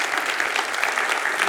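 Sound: audience applauding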